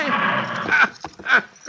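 A retired cavalry horse whinnies, a loud quavering neigh that breaks into a few short, breathy snorts and bursts toward the end.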